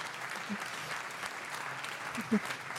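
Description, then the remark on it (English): An audience claps steadily throughout for a 13-year-old who does rally driving in a 205 Rally, a dense, even patter of many hands at moderate volume, with a brief voice cutting through near the end. “Oh my God, can we get that an applause?”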